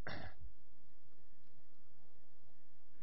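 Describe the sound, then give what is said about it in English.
A single sharp throat-clearing cough right at the start, followed by quiet room noise for the rest of the moment. “I have a cough.”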